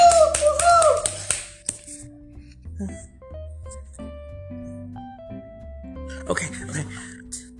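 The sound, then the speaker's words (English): A burst of clapping fills the opening second and a half, dies away, then returns briefly near the end, with sustained musical tones playing underneath throughout. “I need you to go ahead and give it to my baby with a big round voice and a clap this morning.”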